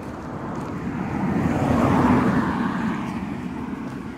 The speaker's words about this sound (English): here comes another car. See it.